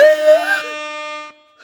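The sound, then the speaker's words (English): An air horn sound effect blares with a buzzy, harmonic-rich tone that wavers and rises at first, then holds steady for about a second before cutting off abruptly. “That's the war crimes air horn.”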